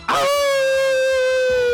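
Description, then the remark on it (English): A single long wolf howl sound effect rises sharply, then holds a steady, clear tone for nearly two seconds, loud with no talking. “I don't even know what a Titan does, so I guess I'll just do a lone wolf. Just give me a lone wolf.”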